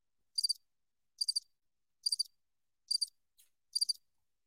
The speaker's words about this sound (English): It's fucking crickets.